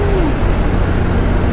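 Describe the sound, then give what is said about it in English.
A 1986 sports car, backdated, with its stock 3.2 engine, rumbles steadily as it accelerates: a loud low drone with a brief falling whine near the start; nobody speaks. “It's originally a 1986. Yes. It was already backdated when he got it, so it was a very early backdate.”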